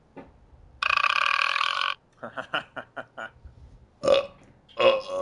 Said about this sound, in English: Studio audience rejected your live belch.